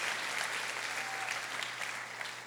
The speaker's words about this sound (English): Dele un aplauso al Señor si usted cree que usted es de los justos. Give the round of applause if you believe that you're righteous.